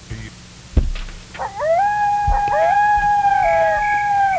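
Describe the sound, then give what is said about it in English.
Three coyotes howling, a long rising wail that settles into a steady, fairly loud sustained cry after a brief thump, overlapping howls carrying on to the end. “Broadcast to five people and a cat and three coyotes.”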